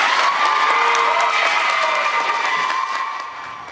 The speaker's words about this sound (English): Yeah, so you can hear and see the people there applauding after Council Member Deidreana Freeman asked for some language, an amendment for that language of genocide to be added in the resolution.